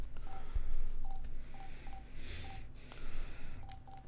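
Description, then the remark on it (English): A quick series of short telephone keypad beeps as a second phone number is dialed after the first was bad, about ten tones in an uneven rhythm over a low background hiss, with no one speaking. “We got one bad phone number. We'll try the other one.”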